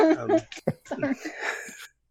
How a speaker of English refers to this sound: Oh, hi, sneeze.